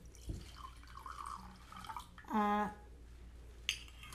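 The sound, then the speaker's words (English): Underwood rosé wine, Oregon grown, is poured into a glass in a brief gurgling splash that rises in pitch, with low room noise around it and a light clink just after. “I'm going to pour more wine.”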